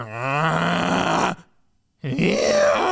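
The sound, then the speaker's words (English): A voice imitates loud snoring: a long, rumbling inhaled snore, a brief pause of silence, then a second throaty snort-snore, loud. “They snore in sync, like a damn opera.”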